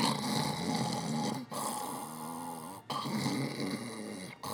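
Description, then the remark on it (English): A person loudly imitates snoring, making long, rattling, throaty snores in about three drawn-out breaths separated by brief pauses, with no other voices. “someone snored through the whole fucking movie.”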